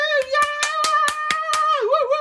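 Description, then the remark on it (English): A single person claps steadily, about ten quick claps, while a sustained high vocal whoop rings over them and wavers at the end. It's a solo cheer, not a crowd. “no studio audience clapping for you there”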